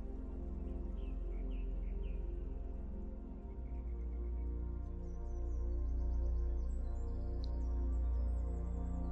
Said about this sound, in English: I am acknowledging the calming sounds of the birds in the sky.